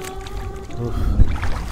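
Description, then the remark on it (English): A small boat moving across water, with a steady low rumble and faint humming tones, plus water sloshing and churning that grows slightly louder toward the end. No one speaks. “I'm just not used to boats.”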